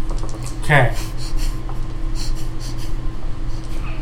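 Pen or pencil scratching across a scrap of paper in quick, uneven strokes as someone draws breasts by hand, with a brief vocal sound near the start and a low hum underneath.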